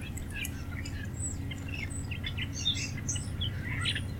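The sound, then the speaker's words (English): Scattered small birds chirp and tweet over a steady low outdoor rumble, with overlapping calls coming from several directions along a quiet, flat section of the San Francisco Bay Trail at the west end of Automall Parkway in Fremont, California. “The trail section is long, flat, and quiet enough to be popular among bird watchers.”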